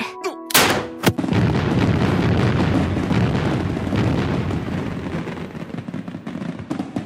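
Two sharp, loud blasts in quick succession open the sound, followed by a dense, sustained rumble and crackle of fireworks going off.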